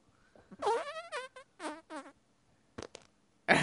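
A run of loud, squelchy armpit fart noises: a long, wavering one first, then a few shorter sputtering bursts with brief pauses between them. No one speaks.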